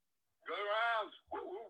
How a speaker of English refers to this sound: The dogs. I love it.